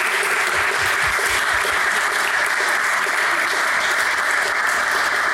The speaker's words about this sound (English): I think that is the perfect ending note. Can we give a massive round of applause for our panel speakers?